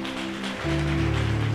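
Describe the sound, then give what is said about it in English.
A church audience applauds with steady, dense clapping that holds throughout, while sustained low keyboard-like chords sound underneath and shift to a new chord partway through. “Come on, church, let's give them a round of applause.”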